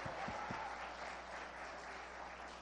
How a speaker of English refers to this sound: We have the right to clap and to shout unto God, because the Bible says, oh, clap your hands, all your people, and shout unto God with a voice of triumph. Can you just clap and say, praise the Lord? Praise the Lord!